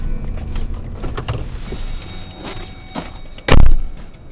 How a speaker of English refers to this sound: Out in the brisk February morning, the cold gets into your lungs quickly. The biologists unload snowmobiles from their idling trucks, parked nose to tail just off the side of the road.